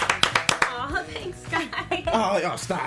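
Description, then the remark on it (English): A quick burst of about five sharp hand claps at the start, then people talking and laughing over scattered fainter claps, clapping to welcome a special guest on the DMC show. “So you know, clap it up for them one time there.”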